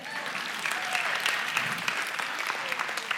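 An audience applauds steadily for about three seconds, many hands clapping in a dense, even patter that holds the same moderate loudness throughout.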